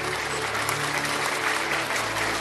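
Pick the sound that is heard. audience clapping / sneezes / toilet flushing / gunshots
audience clapping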